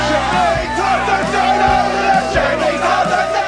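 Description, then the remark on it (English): Dense crowd chatter from a smaller group inside a local pub, many overlapping voices talking and occasionally shouting over one another, with a slightly thin, compressed quality from being recorded over a Zoom video call. “Recording over Zoom worked well for smaller groups, like the crowds inside the local pub.”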